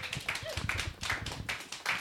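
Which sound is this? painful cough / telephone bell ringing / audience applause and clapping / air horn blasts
audience applause and clapping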